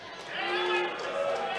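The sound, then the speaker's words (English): A live audience cheers in a steady, dense wash of many voices, with a few higher shouts rising above the mix, when asked about support for Tim Scott. The noise stays loud throughout, without a break. “All right, we got some Tim Scott. That was … with the cheers.”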